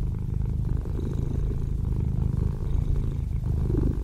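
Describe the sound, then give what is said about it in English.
A cat purrs steadily, a continuous low rumbling hum with a gentle pulsing rhythm that holds for several seconds with no other sounds. “So everybody just sit and purr.”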